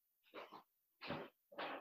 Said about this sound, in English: No, here comes the dog.